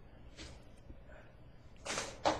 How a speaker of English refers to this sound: I'm going to shut the doors.